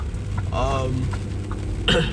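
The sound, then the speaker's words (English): Steady rain drums across a car's roof and windshield in a dense, constant hiss over a low engine rumble, with a brief vocal sound and a sharp bump near the end. “Mainly it's just all this rain now.”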